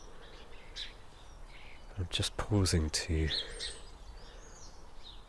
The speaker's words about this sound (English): converse with the sparrows, who are this little bunch of them moseying around in a little the hedge border between my house and my neighbour's house, chatting to each other. There's a few starlings as well.